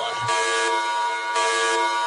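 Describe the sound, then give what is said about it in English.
A loud, blaring alarm sounds continuously for about two seconds, a harsh buzzing tone rich in overtones that swells slightly twice, with no voices over it. “In retrospect, the alarm noise is probably not the most appropriate one to play at the end of this podcast.”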